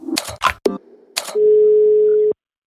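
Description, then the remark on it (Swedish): A few clunks and clicks of a phone handset being picked up to place a call, then a steady, unbroken telephone dial tone hums clearly for about a second before cutting off abruptly. “Nu var det Björn och Svennis igen som ringer dig.”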